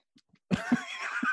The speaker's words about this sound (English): I don't have coronavirus, by the way. I keep clearing my throat. It's not coronavirus.